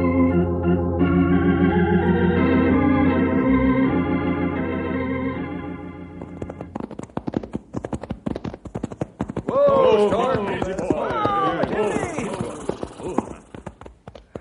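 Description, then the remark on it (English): Sustained music gives way to a steady, rapid clip-clop of horses' hooves as riders head out to a canyon, with a loud voice or shout rising over the galloping hoofbeats partway through. “Fellas, let's saddle up and go out to the canyon and do our own sleuthing.”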